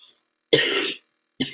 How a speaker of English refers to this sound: I'm actually kind of sick right now. That's why I'm keep coughing.